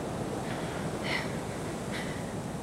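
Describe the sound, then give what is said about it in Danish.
A steady, breathy rush of wind blows outdoors among trees under open sky at an even level, with a low rumble underneath and a couple of faint, brief high-pitched squeaks. “Der er intet herude, Gro. Der er træer og himmel. Vind.”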